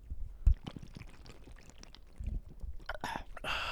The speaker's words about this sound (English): Cheers. Cheers. Cheers. Let's take that first drink.